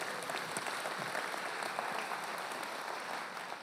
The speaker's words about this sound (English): Amen. You can clap for that. Either do it or don't.